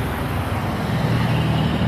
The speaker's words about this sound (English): Ah, the city bus is here, but on the other side, not the one I want to take.